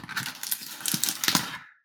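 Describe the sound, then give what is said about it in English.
Packaging of a new game being torn and ripped open during a live unboxing, in a rapid series of crinkly, papery rips and crackles lasting under two seconds, fairly loud and without speech, then cutting off into silence. “Would you like me to do a live unboxing of a new game?”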